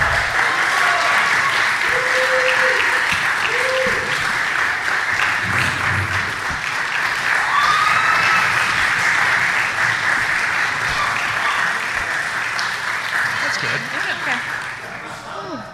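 An audience claps steadily and loudly for about fifteen seconds, with a few scattered whoops and cheers mixed in, before the applause begins to thin out at the end.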